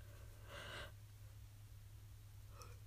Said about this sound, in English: Excuse me for yawning.